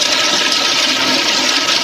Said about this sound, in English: You get on your knees and stick your head in the toilet and flush!